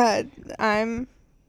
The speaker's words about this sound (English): That's after you're done with your really long yawn.